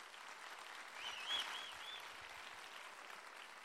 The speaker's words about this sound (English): Can we just for a second, can we just give a huge round of applause to all the serve team for just a second?